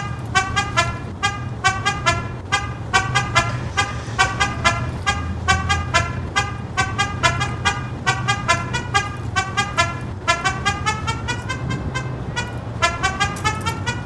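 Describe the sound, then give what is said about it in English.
A tune honked out entirely on car horns, short bright blasts following a rhythmic melody over a steady low engine rumble, loud, with no talking. “But in all seriousness, I found a song that is made completely of car horns”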